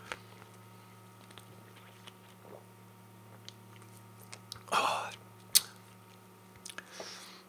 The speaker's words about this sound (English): But first of all, let me have a sip of this delicious beer. By the way, I'm drinking it out of the can. Deal with it.